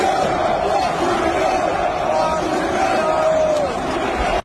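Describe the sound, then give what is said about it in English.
A large arena crowd at a UFC fight in Toronto roars and chants "fuck Trudeau" together in a dense, steady wall of shouting voices, loud and unbroken for the full stretch, with rising and falling vocal tones woven through the din. “In case you can't hear it, they're screaming, fuck Trudeau.”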